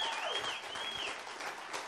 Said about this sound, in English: Let's give a round of applause for God, our Lord Jesus. And can we just give a round of applause to the youth in this house? Can we just like honor them?